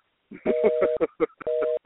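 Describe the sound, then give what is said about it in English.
Electronic telephone keypad tones sound in two steady bursts of about half a second each, separated by a short pause, with a voice talking over and between them. “Maybe I'm dialing his old phone.”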